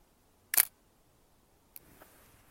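A crisp, loud Nikon F3 film camera shutter release snaps once, followed about a second later by a softer mechanical click and brief whir, outdoors on a forested hill, against an otherwise quiet background.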